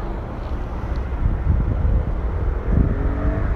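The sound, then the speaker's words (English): Low, steady car traffic rumble at a street junction with traffic lights, swelling twice as vehicles pass, with gusty wind buffeting the microphone throughout. No one speaks. “Waiting patiently at the traffic lights so nobody beeps at me again.”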